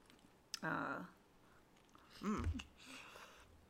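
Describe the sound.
A sharp crunchy bite into a cake noodle, followed by soft chewing and rustling, with short voiced hums and murmurs in between.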